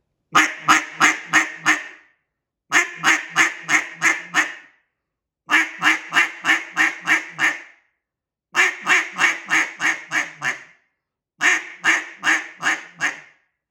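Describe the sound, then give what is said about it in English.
A cut-down duck call is blown loud in five short bursts as single-note practice. Each burst is a run of about six crisp, evenly spaced quacking notes, separated by brief pauses, with no talking. “CUT-DOWN DUCK CALLING LESSON AND TECHNIQUES”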